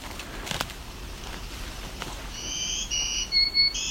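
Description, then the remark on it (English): An American redstart sings a short run of thin, high-pitched notes in the second half, a few sustained tones stepping between pitches over a quiet background hiss, with no talking. “Our higher pitch one, I think that's American Red Start.”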